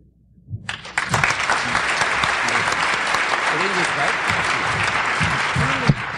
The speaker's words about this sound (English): give it up for them. And keep on clapping, coming back to the stage for one final poem reading in this order,